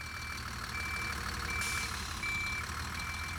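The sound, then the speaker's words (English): An open-top bus rumbles and judders down Horse Ferry Road, a road leading to an old crossing of the Thames, in heavy rain, its heavy engine droning steadily while a repeating reversing-style beep pulses at regular intervals over the traffic noise. “An open-top bus judders down Horse Ferry Road, the way to an ancient crossing of the Thames.”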